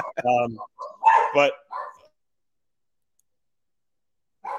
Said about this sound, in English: So I'm redoing my driveway and pavers here. So I got construction people here today, so the dogs are barking a lot.